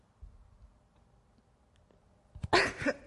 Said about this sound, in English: Suddenly coughing is a whole new thing.